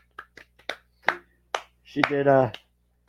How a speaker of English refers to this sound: We got to give her a round of applause.